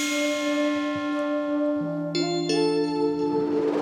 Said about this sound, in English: Bells. Great, great, great.